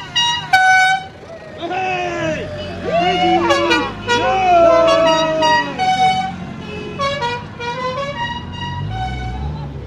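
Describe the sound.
Several car horns honk over and over, loud, their overlapping blasts blaring in bursts and long held tones, with a busy jumble of voices and street noise underneath, as people set off for Navan.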